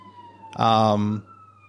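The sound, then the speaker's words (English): An emergency vehicle siren sounds from outside, a steady tone joined by a loud, brassy horn blast lasting about half a second before the siren carries on. “there's some sirens in the background and they're not coming for me.”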